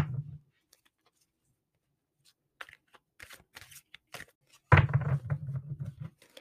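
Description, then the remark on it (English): A Modern Witch Tarot deck by Lisa Sterrell is shuffled close up: scattered crisp flicks and taps, then a longer dense riffling burst of cards slapping together, with no talking. “Shuffle.”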